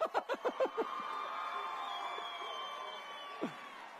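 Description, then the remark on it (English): A live audience lets out a quick burst of rhythmic laughter, then a sustained wash of cheering and whooping that fills the room before gradually settling, with one short vocal yelp near the end. “Are you really cheering unemployment?”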